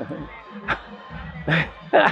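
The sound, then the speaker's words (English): A steady murmur of a large crowd at an outdoor event, many voices chattering at once, with a few louder bursts of laughter-like sound rising above the babble at moments. “You've brought this amazing crowd out today.”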